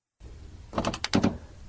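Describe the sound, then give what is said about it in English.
A car door opens, a quick cluster of mechanical clicks from the handle and latch followed by a dull clunk, moderately loud against a quiet background. “No, not that door. This one.”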